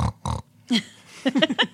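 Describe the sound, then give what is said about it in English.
A pig named Wanda Petunia grunts: two quick, breathy snorts, a pause, then a rapid string of short, squealy grunts rising and falling in pitch. “And we're with our pig friend, Wanda Petunia.”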